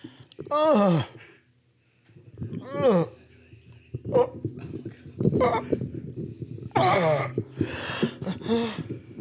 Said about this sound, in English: I'm breathing heavy. How's my voice sound? Nice.